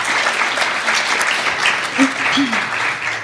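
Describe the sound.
An audience applauds in a steady, sustained wash of clapping at an even loudness, with a few brief voice sounds or cheers rising through it near the end.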